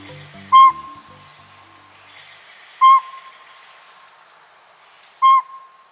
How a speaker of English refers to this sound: A pint-sized northern pygmy owl, not much bigger than a pine cone, hoots from a northwest treetop on a winter morning.